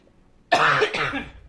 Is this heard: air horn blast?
no